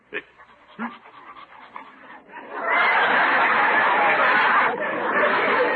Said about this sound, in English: Where is the dog? I'll get him. Here, boy! I'm taking you for a walk. Now, don't rear up on me.